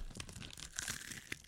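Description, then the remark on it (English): Crisp crunching of a potato chip being bitten and chewed as a final crunch, a quick series of brittle cracks and crackles over about a second and a half, with no talking. “No, do the final crunch for real.”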